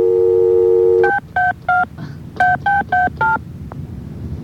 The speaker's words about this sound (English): Isn't this great? You just dial a number and nothing happens.